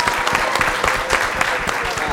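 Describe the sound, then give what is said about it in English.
A small group claps steadily, a dense, continuous patter of hand claps at moderate loudness with a few sharper individual claps standing out throughout. “I also think we should all applaud Schmitty for doing a tremendous job”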